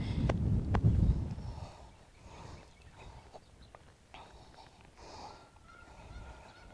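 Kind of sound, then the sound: bird, geese honking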